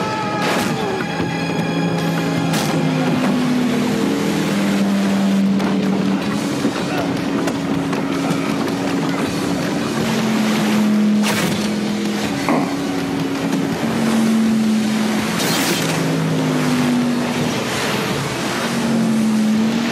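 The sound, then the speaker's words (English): Loud, continuous roar of motorboat engines in a boat chase, their pitch rising and falling as they speed across the water, with splashing spray, sharp bangs and muffled voices mixed in. “Boat chase.”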